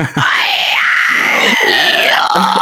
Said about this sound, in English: Scream it off.